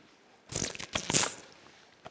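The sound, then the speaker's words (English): A loud slurping sip of a drink, a second-long burst of wet, hissy noise, heard on its own with no talking, followed by quiet. “Wow, sorry, that was a loud sip.”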